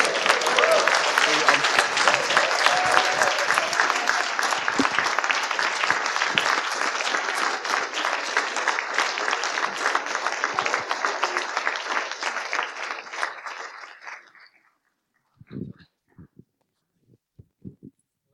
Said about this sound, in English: Ladies and gentlemen, it is really with tremendous pleasure, and those of you at St. Stephen's know what I mean by that, to say you have a new vicar, so give him a round of applause.